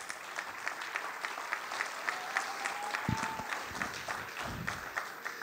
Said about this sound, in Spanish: Yo no sé qué más decirle para que usted aplaude y alabe a Jehová por lo menos.